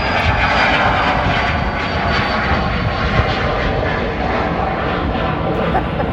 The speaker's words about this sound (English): we're going to wait for the plane to pass by.